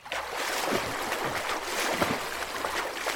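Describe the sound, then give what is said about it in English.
Swimming strokes splash steadily through the water of a Scottish loch, fairly loud, with broad watery churning and a few sharper splashes rising above the continuous slosh. No one speaks. “I swim a few strokes, focus on my breathing.”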